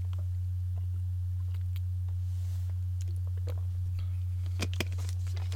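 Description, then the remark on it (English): Someone takes a quick sip of Gatorade, with soft wet mouth clicks and a brief slurp near the end, over a steady low electrical hum. No one speaks. “Got to get a little sip of the Gatorade there.”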